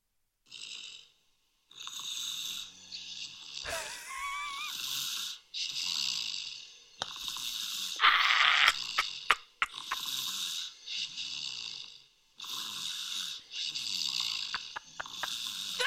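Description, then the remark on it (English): A father and daughter snoring together, the daughter's snore loud and prominent, the father's fainter underneath, in steady repeated rasping breaths that overlap and alternate, with a few sharp snorts and wheezy, whistling bursts. “So the dad's in the background. You're going to have to try and listen to that. Okay, but the daughter's in the forefront.”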